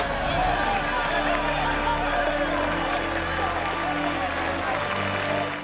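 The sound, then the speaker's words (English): Sustained applause from a large crowd, including officers, as the United States Navy reinstates Senior Chief and Diver Carl Brashear to full active duty; a dense, steady roar of clapping that holds at an even, loud level for several seconds before easing slightly at the end. “Did you notice everyone applauded, including the other officers, except for Hanks?”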